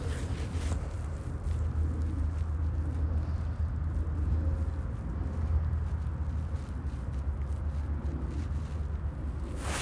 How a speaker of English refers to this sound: That was the sound of us staying still on a dirt path at the nature center. We have two nature centers, but the closer one, so nearby our house.